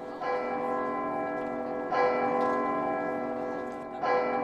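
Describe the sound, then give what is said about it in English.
The bell in the belfry of Holy Trinity priory in medieval Dublin, 1320, tolls three times at a steady, slow pace, each strike ringing with rich overtones that hang and blend into the next. It sounds full, with no voices. “High up in its belfry, its bell booms out across the city.”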